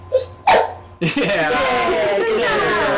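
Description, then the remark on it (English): A dog, Leia, gives a couple of short, sharp barks, then a person starts talking over the room. “We have two dogs in the room as well.”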